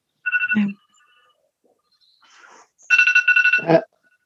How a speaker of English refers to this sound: Was the phone going off there? Or an alarm? I can hear you. I'm trying to cancel it. I had timed myself.